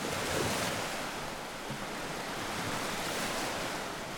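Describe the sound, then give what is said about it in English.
Steady lake waves wash onto a sandy beach at the Platte, where the river meets the lake, in a continuous, broad rush, with some wind blowing across the microphone. No voices, just the even surf. “I've been coming to this beach since I was a kid, and I've never seen it look like this.”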